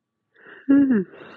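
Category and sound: human body sound, yawn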